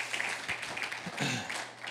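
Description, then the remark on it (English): An audience at Renew Life Church claps their hands to welcome first-time visitors, a steady, dense wash of applause, many overlapping claps blending into a bright, continuous patter with a few brief shouts or cheers mixed in. “So church, can you give them a big old hand clap?”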